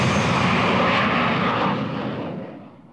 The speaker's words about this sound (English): 100 times greater still, 25 metres away from a jet aircraft taking off.